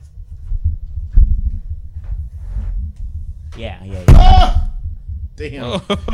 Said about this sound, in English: Did you drop the mic or something? Yeah, he did.